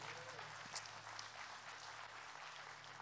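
crowd, audience hand clapping

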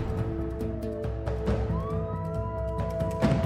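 vehicle, police siren wailing

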